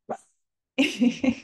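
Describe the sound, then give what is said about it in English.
A female pet dog makes noises: a short sound, a brief silence, then a run of several tonal, voiced vocalizations in quick succession, fairly loud, with no talking. “Anyway, she's a bit of a queen, our dog.”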